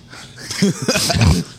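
A person sneezes once, a sharp, noisy burst of breath wrapped in short voiced grunts and snorting sounds, fairly loud and over in under two seconds.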